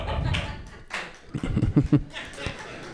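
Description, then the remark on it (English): A couple of sparse, sharp hand claps from an audience stand out over a low murmur of crowd noise and faint chuckling, with no sustained applause building. “Two claps.”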